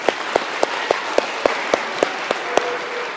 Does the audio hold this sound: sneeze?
no